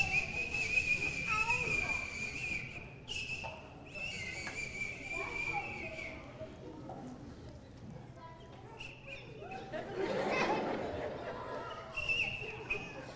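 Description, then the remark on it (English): Someone imitates with their mouth a whistling sound heard coming from somewhere inside a house at about 3 a.m.: a steady, high-pitched tone held in long notes, broken by short pauses, over faint background noise. “A little while back, it was like 3 o'clock in the morning, and I heard this whistling coming from somewhere inside the house.”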